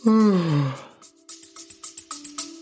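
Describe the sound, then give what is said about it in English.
A woman's long, drawn-out yawn that slides downward in pitch, fairly loud, followed right after by a short rhythmic musical jingle with steady plucked beats. “She soon started yawning.”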